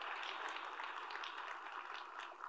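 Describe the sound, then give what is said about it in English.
An audience claps for Christian counseling, a dense, steady patter of many overlapping hand claps that stays fairly soft and even for a couple of seconds, with no one talking over it. “Yeah, we can clap for Christian counseling.”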